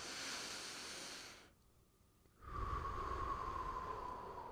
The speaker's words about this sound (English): Get that air, that oxygen into your lungs, hold it for about 4 or 5 seconds and breathe out another 8. Do that 3 or 4 times.